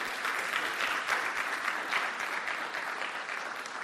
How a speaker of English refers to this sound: Come on, give the Lord a good round of applause because it's true.